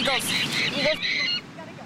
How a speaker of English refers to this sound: Eagles.